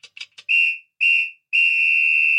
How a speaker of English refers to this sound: There we go. Full-time whistle.